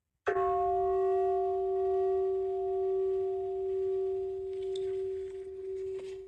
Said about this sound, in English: The simple sound of this bell that is rang every 30 minutes to help remain focused on minding the mind and keep coming back to your breath.